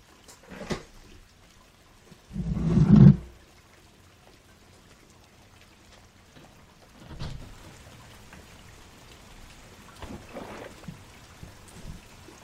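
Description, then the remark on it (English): Rain falls steadily as a soft, continuous hiss at sea on the Atlantic, swelling in a few louder patches, with one brief deep rumble early on. Nobody speaks. “I don't know whether it was the rain cooling down the burns on my arms, or seeing that stupid fucking head get launched into the sea.”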